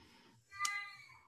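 cat meowing

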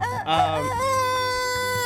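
rooster crowing

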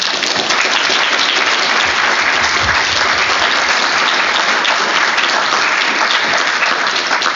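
audience round of applause

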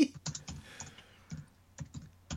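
computer keyboard typing

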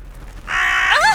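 crow cawing

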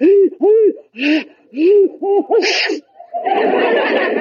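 sneeze

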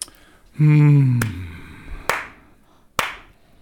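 hand clapping

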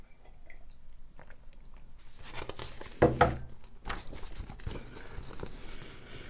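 sipping tea

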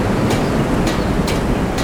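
flowing river water

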